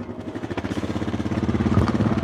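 The engine of a small, bright red four-wheeler ATV runs steadily as it is ridden a few hundred feet around an active runway to where the Chukchi Sea meets the island, its low, throbbing putter pulsing rapidly and evenly with a slight rise in loudness toward the end, and no voices.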